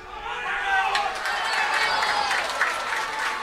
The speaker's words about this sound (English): Well, a huge crowd in Netwatch Cullen Park, and just before we do get down to the action